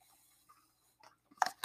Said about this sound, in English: Sipping on some slush. Very good. Love the peach. It is delicious. This peach is probably the best thing I've ever had.